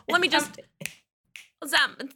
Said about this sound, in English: Okay, adios, audio listeners. I am going to snap my fingers in a Z, so.